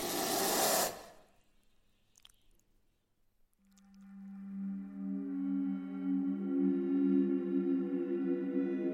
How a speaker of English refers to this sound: stop poking the snakes.